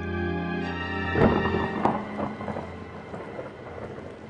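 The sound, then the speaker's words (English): Steady rain hisses throughout on a rainy afternoon at a museum while a sharp crack of thunder breaks in near the start, followed by a second rumbling burst and a crackling, fading roll as the downpour continues. “It was a rainy afternoon. Thunder crackled as my class piled off the bus and ran up the stone steps to the museum.”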